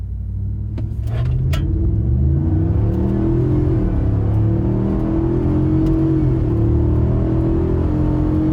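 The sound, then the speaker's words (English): A big 7.3 diesel truck engine revs and accelerates hard at full throttle, its deep rumbling drone rising in pitch through gear shifts, loud, with no one speaking. “Anyway, so I just figured people would want to hear the goodness that is the 7.3.”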